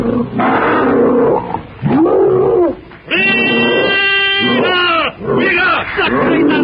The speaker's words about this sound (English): As he does so, not one but two of the prehistoric monsters leap from the depths of the pit and shoulder to shoulder charge directly for him. With crooked fangs bared, wicked red eyes gleaming with rage, they shriek their blood-curdling challenge.